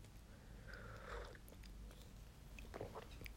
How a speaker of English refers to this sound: I'm going to take a sip of tea because I'm really thirsty.